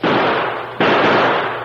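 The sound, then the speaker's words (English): Two loud, booming blasts of cannon fire, dropping shot inside a stockade, the second coming a moment after the first, each one roaring and rumbling on without any voices. “That cannon.”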